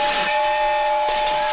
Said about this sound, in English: Suddenly, Roger's head turned into a steam whistle and let out an ear-piercing blast.